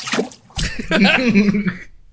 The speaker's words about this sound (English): The faucet just detached. Holy hell. I think I have audio of the faucet detaching.